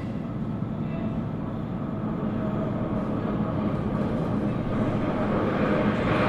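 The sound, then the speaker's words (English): A steady, heavy rumble of an underground train approaching platform B, a dense low roar with a faint hiss above it, holding at an even, fairly loud level throughout. “The train approaching platform B is the service to Paddington, not stopping at Bond Street.”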